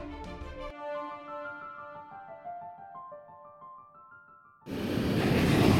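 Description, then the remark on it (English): Gentle tonal music plays for several seconds, then cuts abruptly to a loud, steady rush of waves breaking on the beach at the Jersey Shore on a summer day, continuing to the end. “We're at the Jersey Shore, where it's a beautiful summer day.”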